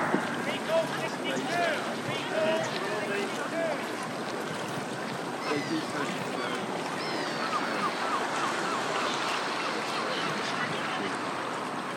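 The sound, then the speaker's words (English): Water laps and sloshes steadily around a small boat, a continuous wash of gentle splashing, with faint background voices and a few high chirps. “There now, we're out in the water.”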